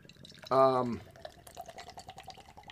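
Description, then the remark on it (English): Fruit beer of 38 IBUs pours into a glass with a soft, steady trickle and faint splashing, following a short loud voiced sound at the start. “You can smell the fruit coming out of the pour.”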